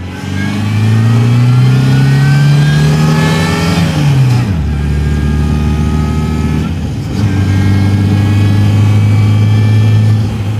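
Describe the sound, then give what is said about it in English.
A supercharged 1971 MG British sports car engine revs loudly, climbing in pitch as it accelerates, dropping sharply at a gear change, then pulling hard again through another shift, on a windy stretch of the Schoharie Turnpike during a rally loop. “this 1971 MG does have a supercharger, and Bob was eager to showcase what it sounds like”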